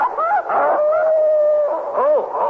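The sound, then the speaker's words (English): A dog howls, loud and drawn out, its wavering tone holding steady before breaking into a short, bending yelp-like rise near the end. “Did I hear a dog up here?”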